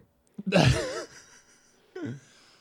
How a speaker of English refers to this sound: I'm going to do some breathing.